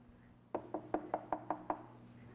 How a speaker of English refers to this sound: she hears another knock on her door. She goes to the door, she opens it, and again, nobody is there.